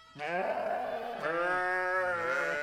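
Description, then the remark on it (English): A sheep bleats loudly, a long wavering call that breaks briefly and carries straight on into a second drawn-out bleat. “Later that evening, Lottie helped Dad to round up the sheep.”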